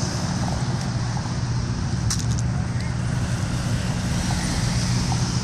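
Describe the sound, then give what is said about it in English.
Continuous low rumble of road traffic, steady and fairly loud throughout, with a few brief clicks and rattles partway through and no clear individual vehicles standing out. “Then why don't you stand and block the traffic, my dear?”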